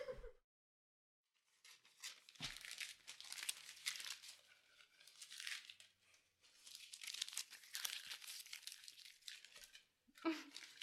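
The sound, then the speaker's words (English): Crisp paper crumpling and crinkling for ASMR in dense bursts of rustling, with a couple of brief pauses and a sharper crackle near the end, no voices. “Paper ASMR.”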